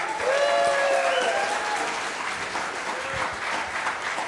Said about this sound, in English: Okay, so first, we need to thank the church, First Baptist Church of Titusville. Big round of applause.